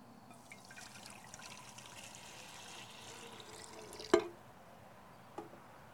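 Water pours steadily into a kettle for about four seconds with a bright, splashing trickle, then stops with a sharp clunk, followed by a softer knock a moment later.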